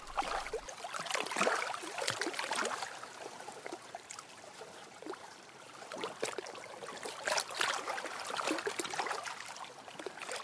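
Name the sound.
fast-flowing river water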